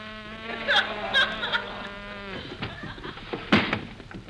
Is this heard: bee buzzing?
yes